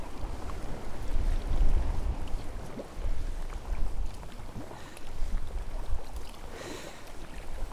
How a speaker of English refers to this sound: Aye, the wind's picking up. Wasn't forecast to, but it is. It's only blowing force 3 though. There are no white caps on the surface of the sea yet. I only feel it because I'm paddling into it.